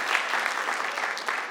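A crowd applauds a person who answered a catechism question on the spot, with steady, dense clapping that holds an even, moderate loudness throughout, a broad crackling patter with no voices standing out.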